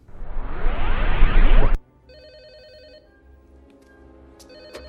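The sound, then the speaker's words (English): A loud, rising electrical surge as the power is turned back on cuts off abruptly, then a telephone rings with a warbling electronic trill in two bursts, clear, with no one talking. “after Lex turns everything back on, we get that nice little phone call”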